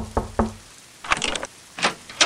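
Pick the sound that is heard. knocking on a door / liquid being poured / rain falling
knocking on a door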